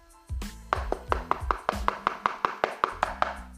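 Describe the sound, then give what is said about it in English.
A rapid, steady series of knocks, over a dozen sharp raps in an even rhythm, each with a hollow thud, played on their own with no talking. “So I'm going to knock again.”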